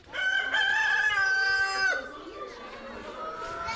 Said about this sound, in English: Drumlin Farm is home to dozens of chickens of many different breeds. And today, the children have to do their chicken chores in the hen house. They collect any eggs the hens have laid and make sure they're well fed.